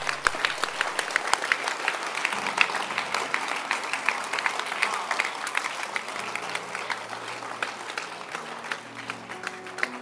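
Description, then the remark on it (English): An audience claps steadily for about ten seconds, a dense patter of many hands with sharp individual claps standing out, fairly even in loudness with faint low tones underneath. “You can clap your hands.”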